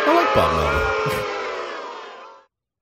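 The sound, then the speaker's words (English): A large stadium crowd roars with clapping mixed with low, drawn-out boos and a few yells as manager Bob Melvin reads the lineup of the visiting San Francisco Giants. The noise is loud throughout before fading and cutting off abruptly. “I think there's more claps than boos.”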